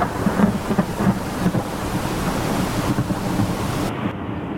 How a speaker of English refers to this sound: This damn storm is going to ruin everything. We're going straight into the heart of it.